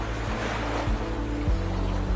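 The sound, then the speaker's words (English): Sea surf in Cape Town's False Bay washes in a steady, broad roar, with a low rumble underneath and a few soft thuds as waves break. No one speaks. “For the past 3 years, at the crack of dawn every morning, she has headed to the sea in Cape Town's False Bay for a cold water swim, with water temperatures that can drop to chilly extremes.”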